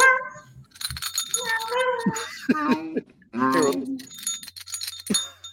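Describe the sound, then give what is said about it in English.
A small bell once used for a cat is shaken around and jingled in bright, rapid tinkling bursts, while voices make sounds alongside it. “Oh, no, I have the bell that I used to use for the wrestling cat. You shake it around.”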